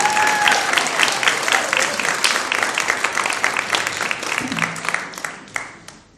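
At a church baptism service, an audience applauds a person for a job well done in a dense, sustained burst of many overlapping hand claps, fairly loud and steady before thinning out near the end, with some faint voices mixed in.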